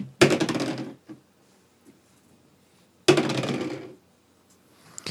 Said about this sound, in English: All right. I'm doing stuff. I rolled something useful on this dice.